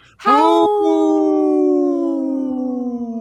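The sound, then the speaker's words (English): A single long wolf howl rises quickly and then holds a steady, slowly falling tone for about three seconds. It is loud, with no voices around it. “Howl!”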